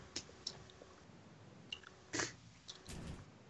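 Close, crinkly crumpling and handling noises come in several short bursts and one longer rustle near the end, like a wrapper being scrunched while food is put together. No one speaks.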